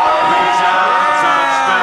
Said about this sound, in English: Listen to that crowd, they are insane! They've been waiting 2 years for this.